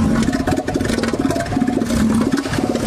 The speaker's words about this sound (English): You know, that probably the weirdest one, though, was definitely the elephant seal.